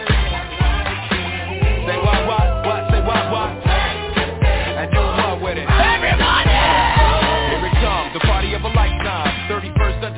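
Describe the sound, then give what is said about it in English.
A lively party crowd yells and whoops together, loud and sustained for about ten seconds, over a steady pounding bass beat with no clear speech. “If you're ready to party, let me hear you scream.”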